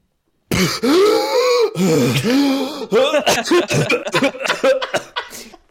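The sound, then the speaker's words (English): A loud fit of coughing: strained, throaty vocal sounds give way to a rapid string of harsh coughs and throat-clearing bursts, with no talking. “You coughing was contagious to me because I legitimately have COVID right now.”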